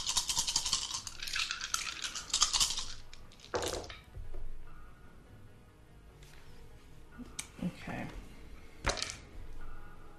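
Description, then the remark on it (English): A handful of seven dice, a damage roll in a tabletop game, rattles and clatters in a bright burst of clicks, then several sharp clacks follow as they tumble and settle, with faint voices in the background. “So that makes your total damage pool 7 dice. Okay. This is my damage dice.”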